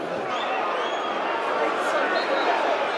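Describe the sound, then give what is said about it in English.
A football crowd at a match against Preston applauds steadily after good work by Scott Malone, a dense wash of clapping and murmur from a large stadium audience that holds at an even level throughout without any clear voices. “That applause reflects that good work.”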